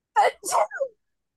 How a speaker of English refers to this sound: God bless you.